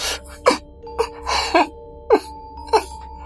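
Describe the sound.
A person imitates sniffling with about five short, wet, breathy snuffles at irregular intervals, moderately loud, over a steady low hum and faint sustained tones.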